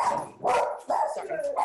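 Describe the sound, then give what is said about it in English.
Two dogs, Buddy and Garth, bark at the mailman in a quick series of sharp, loud yaps, several bursts close together over a couple of seconds, sounding excited. “They're trying to protect me from the mailman right now.”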